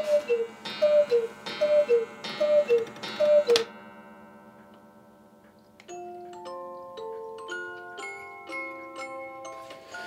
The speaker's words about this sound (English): The latest additions to his collection, two gigantic hand-carved Bavarian cuckoo clocks, hang in his bedroom. This one has the best music box I've heard in a long time.